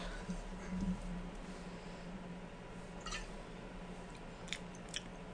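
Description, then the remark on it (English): Quiet mouth sounds: a few short, wet sips and slurps of unaerated wine spaced a second or two apart, with faint swishing and no talking. “I actually, here, take a sip of it without it being aerated.”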